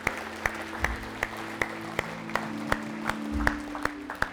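A church audience gives the Lord a hand clap of praise, clapping together in a steady, even rhythm, sharp crisp hand claps about two per second, with sustained low musical tones humming underneath and no voices.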